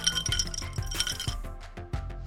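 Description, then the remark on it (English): Glasses clink together in a toast, with a bright ringing tone and several quick chiming taps, while a low rhythmic thump carries on beneath. “Do you have a toast that you would like to offer?”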